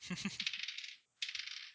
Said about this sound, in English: Okay. Keep rolling my dice behind things. I can't see them.